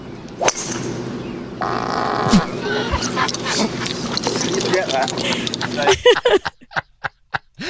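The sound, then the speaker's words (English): A fart picked up by the microphone of a golfer playing golf outdoors, rumbling under murmuring voices and background chatter, with a series of sharp clicks at the end. “Right, as if you didn't know that was a fart.”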